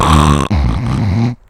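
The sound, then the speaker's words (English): A voice imitates a man's very loud snoring as he sleeps: two harsh, rattling, growl-like snores back to back, forceful, ending abruptly. “And I'm not talking, like, you hear snoring and you're like, oh, that guy snores.”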